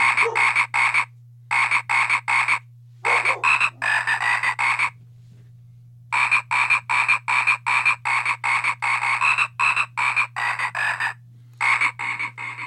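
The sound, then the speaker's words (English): A little Christmas frog croaks loudly in rapid runs of raspy calls, broken by short pauses, over a steady low electrical hum. “That frog, I'm going to have nightmares about tonight, and that damn song.”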